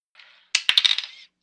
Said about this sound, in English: So roll a 1d6, which is your standard cube dice, and add 2.